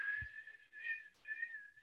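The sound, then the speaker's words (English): A wind gust imitated by whistling: a steady, fairly high airy tone that wavers and swells in loudness for about two seconds, with a short dip midway. No talking. “Oh, is that a wind gust?”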